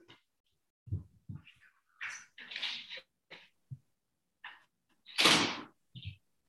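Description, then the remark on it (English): A door is handled and opened to let a dog out: low thumps and clicks, then scraping, rustling bursts and a louder whooshing swing, with no one talking. “I'm gonna let my dog out.”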